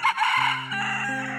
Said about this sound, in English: You hear the cawing of a rooster outside.